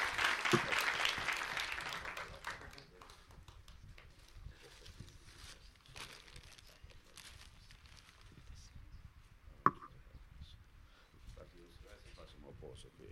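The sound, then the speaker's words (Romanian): Loud applause from a church audience honouring the Sunday school staff bursts out at the start, a dense wash of clapping that tapers after a couple of seconds into scattered claps and crowd murmur, with a sharp knock near the end. “aș vrea încă o dată să-i aplaudăm și Dumnezeu să-i binecuvinteze.”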